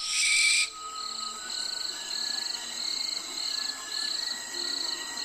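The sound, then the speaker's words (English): A barn owl gives a loud, harsh rasping screech, then a run of shorter hissing screeches in a steady, repeating rhythm, clear over a faint steady background hum. “This is a barn owl. It's so spooky.”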